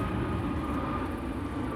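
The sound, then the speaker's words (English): A four-engine Boeing 747 jet, a nonstop flight coming back from London, produces a steady, broad rumbling roar, heavy in the low end with a hissy upper wash, holding an even loudness throughout with no voices. “It's a 747 because it's got the four engines on it.”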